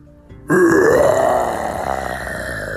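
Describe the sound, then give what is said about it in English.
A person imitates a dinosaur roar meant to scare raptors away: one loud, gravelly, sustained growl that bursts in suddenly, rises in pitch, then holds raspily for about two seconds before easing slightly. “Oh yeah, I'm really good at making dinosaur sounds.”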